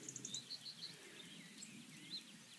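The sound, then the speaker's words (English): Faint dawn chorus birdsong on a hillside in the Brecon Beacons on a still, dry day, a few quick high chirps and short trills repeating over a soft, steady outdoor hush with no voices. “Enjoy a glorious dawn chorus in the Brecon Beacons”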